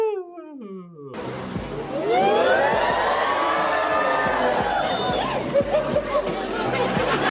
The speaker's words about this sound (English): Do you have a sound effect? Do you have like an audience going, ooh?